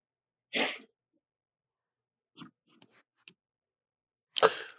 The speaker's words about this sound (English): pardon me for coughing in your ear